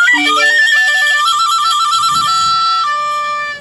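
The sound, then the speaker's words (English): A short, bright jingle: a recorder-like melody steps quickly through clear, piping notes over a shimmer of sleigh bells, playing alone at steady volume before cutting off abruptly. “And he gets sleigh bells and recorder.”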